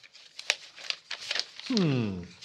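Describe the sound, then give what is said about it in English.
Crisp papers in a documents folder rustle and crinkle in a quick run of dry handling sounds, followed by a short voiced exclamation near the end. “Ah, there's the documents folder.”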